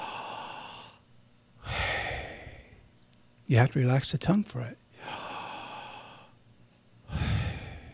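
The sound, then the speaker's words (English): Four long, breathy exhales, moderately loud, shaped like whispered syllables of the Hebrew name of God, Yahweh. A man speaks briefly between the second and third breaths. “It's the very sound of breathing.”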